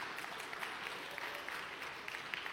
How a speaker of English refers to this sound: It was like the worst golf clap ever.